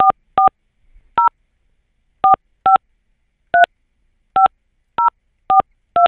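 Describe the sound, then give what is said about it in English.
Ten short, clear touch-tone beeps from a phone keypad as someone dials their mother's phone number, each a crisp two-note chirp, spaced unevenly in quick little groups with silence between and no talking. “You know your mother's phone number? Hang on. 440.”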